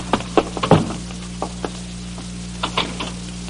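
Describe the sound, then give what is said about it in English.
Heavy knocking on a house door by men from the Provost Marshal's office: a quick burst of several hard raps, then a few scattered thumps after a pause, over a steady low electrical hum with no voices. “You don't need to knock the door down.”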